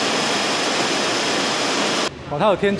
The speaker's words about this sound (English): Once on the production line, damaged cups are filtered out. A worker assesses how dirty the cup is and places it in a tub. The water current will gently push it onward.